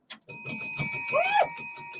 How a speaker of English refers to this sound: Fuck the bell. Where's the trumpet?